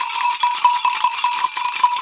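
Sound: hand bells ringing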